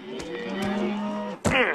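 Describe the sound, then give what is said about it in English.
A cow moos loudly in cattle country, a long drawn-out low bellow followed by a second, brighter rising moo near the end, with no talking. “Nothing beats a stroll in cattle country.”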